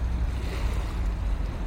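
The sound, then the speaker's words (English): A steady, continuous wash of ocean waves, a broad rushing roar with heavy low rumble and no clear individual breaks, heard alone without any talking. “Morning Breathing with the magic of ocean waves”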